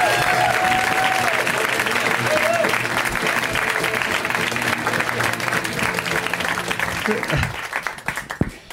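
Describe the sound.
An audience claps steadily in a dense, sustained wash of applause with some cheering voices mixed in, holding loud for several seconds before tapering off at the end.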